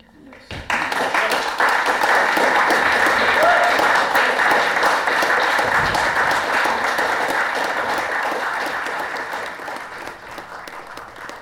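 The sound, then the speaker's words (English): Sustained applause from a live audience at the final Eltham Courthouse Readings, a Melbourne poetry event, many hands clapping in a dense, steady roar that starts abruptly, holds loud for several seconds, then gradually thins and fades toward the end. “If you've just tuned in and you're wondering what that is, dear listener, it is the sound of live applause, something the Melbourne poetry community is no doubt beginning to yearn for.”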